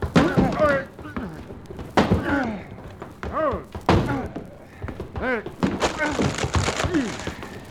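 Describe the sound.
Someone bangs on a closet door in a series of heavy, irregular thuds, several seconds apart, while voices talk and call out over and between the blows.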